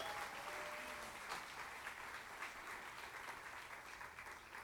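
A crowd applauds steadily, the dense clapping sustained at an even level throughout, heard from within a large room with no voices rising above it.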